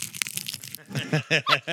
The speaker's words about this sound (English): Are you going to eat your wonton? Oh, no, because it's going to make a really loud, annoying crunch. Do it. Let's see it.